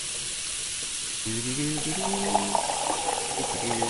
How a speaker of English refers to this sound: So I just fill the water.